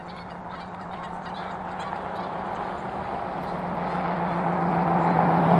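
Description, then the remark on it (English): Geese honk repeatedly over steady traffic noise, their calls blending into a continuous rumble of passing cars that grows slightly louder toward the end. “Hi, geese.”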